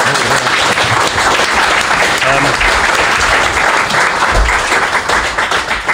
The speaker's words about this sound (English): Round of applause for JP.